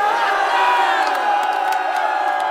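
A crowd cheers and shouts together in a dense, sustained roar at a vernal equinox gathering in underground caves, with scattered voices calling out above the mass of sound throughout, fairly loud.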